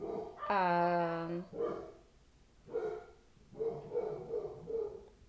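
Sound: dogs barking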